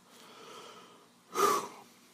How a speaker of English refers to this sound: Frank stares up at the descending floor lights, sweat beading on his forehead, panting heavily.